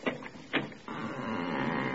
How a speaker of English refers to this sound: Well, here it is. Well, wait, I'll open the door.